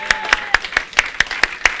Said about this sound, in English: Let's clap for Jesus.